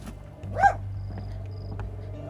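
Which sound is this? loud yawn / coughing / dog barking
dog barking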